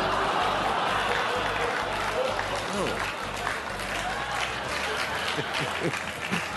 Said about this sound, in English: Booing into applause. You don't usually see that.